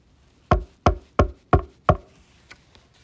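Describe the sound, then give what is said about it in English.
A neighbour from across the street knocks on a door: five firm, evenly spaced, fairly loud knocks, followed by a couple of fainter taps, with no voices. “But one day, when the parents were gone, and the child was up in their room, the child heard this at the door.”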